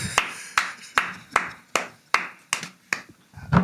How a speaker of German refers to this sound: Respekt, weil ich lege das Mikro weg, weil ich gebe dir Applaus.